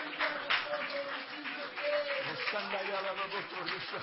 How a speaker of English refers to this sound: Let's stand together. Let's clap to the Lord because I feel His presence here right now.